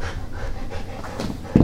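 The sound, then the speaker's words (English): A dog named Tuna pants rapidly and excitedly in short, breathy bursts, ending with a louder huff or bark-like puff near the end. No one speaks. “He's being goddamn insane.”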